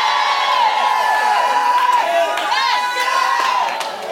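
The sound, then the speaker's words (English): A large audience shouts "yes" loudly and continuously, many voices overlapping in a sustained, high-energy roar of cheering and yelling that holds steady for the whole span. “Shout yes! Shout yes!”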